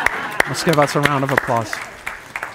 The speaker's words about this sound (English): So let's give us a round of applause.